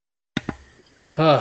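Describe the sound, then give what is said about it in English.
Two quick, sharp coughs in close succession, followed by a short pause and then a person starting to speak. “Sorry, I had to cough.”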